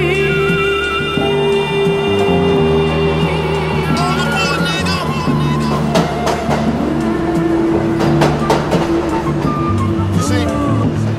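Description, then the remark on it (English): An MTA subway train running: a loud, steady rumble with high whining, screeching tones and sharp intermittent clacks and rattles throughout. “It's against the rules and very dangerous to ride or walk between train cars.”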